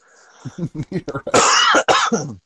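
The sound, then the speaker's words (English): A run of short, rhythmic throat-clearing grunts from a person with a rough, sore throat builds into two loud, harsh coughs, prominent, with no talking. “excuse me for all the coughing, my throat's just hashed over for some reason.”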